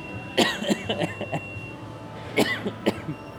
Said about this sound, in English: Okay, so now I'm just laughing and coughing. So it's that good dairy cough.